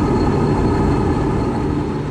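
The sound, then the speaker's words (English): A loud, steady roar of a Navy C-2 Greyhound, a Cold War-era transport plane, landing on an aircraft carrier after a short flight from Guam. A dense low rumble with a faint hiss above it, unbroken throughout and with no voices. “It was a short flight to the ship, and an even shorter landing.”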